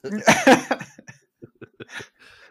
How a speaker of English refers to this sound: are you okay? I heard a cough. Okay. Just need a drink.